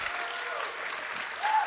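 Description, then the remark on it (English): Audience applause for a speaker being introduced: a dense, steady patter of many hands clapping at once, sustained throughout with a slight swell near the end, and no voices audible. “So like Tinkerbell, if you applaud loudly enough, then maybe the podcast will live.”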